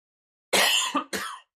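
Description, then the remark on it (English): A harsh, forceful cough in two loud, rasping bursts, the first longer and the second shorter, with no talking around it. “It was mostly for the cough that was aggressive.”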